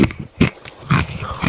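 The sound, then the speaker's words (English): Loud, crackly crunching of thick pizza chips being chewed, with three heavy bursts of crunch about half a second apart and softer grinding between them; no one speaks. “Am I just eating pizza chips?”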